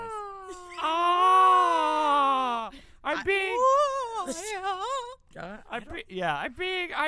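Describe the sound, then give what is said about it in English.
A voice imitates a scary scream: a loud, drawn-out wail, followed by several shorter wavering, howling cries that rise and fall in pitch. “Scary scream.”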